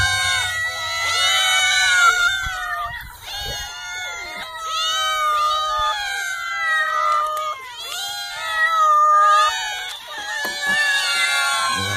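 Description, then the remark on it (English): Loud, continuous yowling and screeching from cats, overlapping wails rising and falling in pitch without pause, harsh, with no talking. “He's torturing a cat.”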